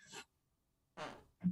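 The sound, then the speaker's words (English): A short, sputtering fart noise comes in three quick bursts: a brief hiss, a longer breathy blast after a pause, then a low buzzy toot to finish, with no talking. “Farted.”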